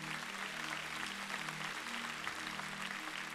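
A church audience clapping their hands together, a dense, steady wash of applause with a low hum underneath, continuing throughout without any talking.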